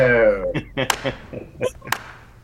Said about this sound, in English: The slow clap that's just going to get bigger and bigger and bigger.